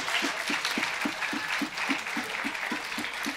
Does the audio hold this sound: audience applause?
yes